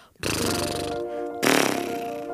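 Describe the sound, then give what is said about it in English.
A person imitates a horse with a loud, buzzy lip-flutter snort instead of a neigh. It lasts about two seconds and swells into a stronger second burst midway through. “For horse, we can do either neigh, or we can make this horse sound, which is kind of fun to do.”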